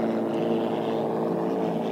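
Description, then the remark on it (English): Hydroplane racing boat engines roar loudly and continuously during a race heat as hydroplanes with Allison and Rolls-Royce engines negotiate the lower corner, a thick, droning blast of powerful motors holding steady throughout, with no voices. “There you're taking a look at the Hams Bear as she negotiates the lower corner with the Berners.”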